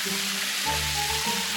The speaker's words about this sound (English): Water cannon!